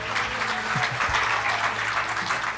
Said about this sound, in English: All right, let's give him a round of applause.